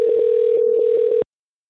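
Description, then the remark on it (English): A telephone ringback tone on an outgoing call to an ice cream cafe: one steady, buzzy electronic burst lasting just over a second, loud, then cutting off into silence. No one speaks. “It's ringing.”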